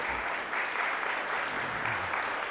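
A church audience claps steadily, a dense, continuous patter of many hands at moderate loudness with no talking over it.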